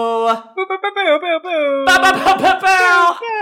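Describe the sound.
A voice mimics an air horn with loud, buzzy, harmonic blasts: a few short choppy honks, then a long sustained blare that grows harsher and noisier toward the end.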